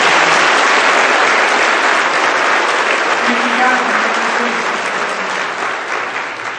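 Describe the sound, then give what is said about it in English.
Loud, sustained applause from a large audience, a dense wash of many hands clapping that fills the whole stretch and begins to taper slightly near the end. “So let's give them a big hand clap.”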